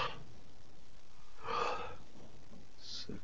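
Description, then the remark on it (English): A single drawn-out yawn close to the microphone, a breathy, voiced exhale swelling for about half a second and then fading, with a faint breath afterward and no talking. “stop yawning on audio.”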